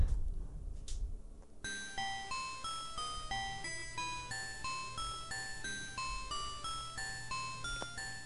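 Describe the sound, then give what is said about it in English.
A video game over bell jingle: bright, ringing chime notes play in a steady stepped sequence for several seconds, preceded by a brief low rumble, with no voices. “Well, we heard like the ending, and this is, I guess, just the game over. And so it's like just the bell sound minus the actual music.”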